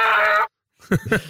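A loud donkey bray with a harsh, buzzing tone cuts off abruptly, followed by a brief silence and then a few rougher, honking bursts.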